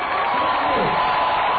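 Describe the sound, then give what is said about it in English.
A large crowd at a political rally in Portland, Oregon roars and cheers after a speech in a steady, dense wash of voices, loud and continuous throughout with no clear individual words standing out. “I'm going to play that one more time just so we can appreciate that crowd noise there.”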